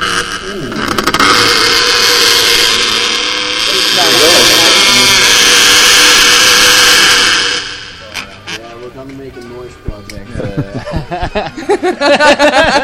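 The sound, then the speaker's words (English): A squeaky chair creaks in long, wavering high-pitched squeals drenched in heavy reverb for several seconds, then the squeaking fades and people talk and laugh. “Keep squeaking it. Let me put some nice reverb on it.”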